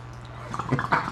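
Short burst of bubbling water, a few quick gurgles in the second half over a steady low hum, moderately loud, with no voices.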